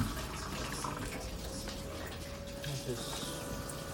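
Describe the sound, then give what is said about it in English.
An appliance pump runs steadily with a constant mechanical hum as water rushes in and fills the machine just after it is powered on, a continuous churning sound that holds at an even level throughout. “The pump is just running, pumping water.”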